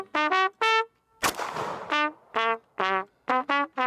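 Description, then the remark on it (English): A short Mario game tune played in bright, brassy trumpet notes, in quick bursts of two or three, broken once early on by a single loud gunshot blast from what looks like a Glock or similar semi-automatic pistol. No one speaks. “Played with gunshots and trumpets.”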